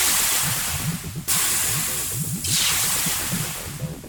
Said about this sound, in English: Those fizzy and popping sounds are from the acid breaking down the contents inside the container.